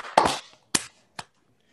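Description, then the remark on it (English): Three sharp hand claps to sync a recording, given after a 3, 2, 1 count, at an uneven pace, the first loudest with a short ringing tail, the next two quicker and fainter, with silence between and no talking. “Somebody we clap it in.”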